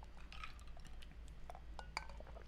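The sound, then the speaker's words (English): Glasses clink together a few times in a toast, bright short chimes, one near the start and a sharper one near the end, over a low steady background hum. “And cheers. Magic. We'll try 'em. Oh, cheers.”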